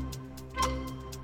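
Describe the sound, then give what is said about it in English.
A steady ticking of a 60-second countdown clock timer during a quick-fire question game, with regular clicks spaced evenly over a low sustained hum, moderately loud, with no voices. “Let's put 60 seconds on the clock.”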